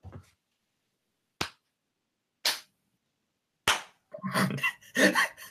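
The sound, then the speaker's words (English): Three sharp single hand claps from three people clapping in turn, spaced unevenly with roughly a second's pause between each, followed by a burst of overlapping voices. “I clapped, and then there was an uncomfortable delay.”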